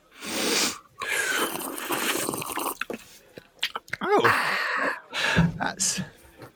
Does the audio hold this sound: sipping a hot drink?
yes